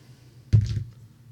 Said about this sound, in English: All right, so go ahead and I don't know who wants to roll the d6s on this, but I'll do it.